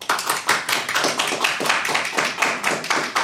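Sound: audience clapping to vote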